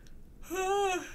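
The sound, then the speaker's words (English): A single voiced yawn lasting about half a second, a steady, fairly high tone that rises slightly and then sinks as it fades. No speech around it. “I don't know where that yawn came from.”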